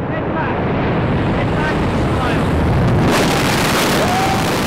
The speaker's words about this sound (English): Okay, he is out of the plane now. He's hurling through space, free falling. Within like a few seconds, he's at 100 miles an hour.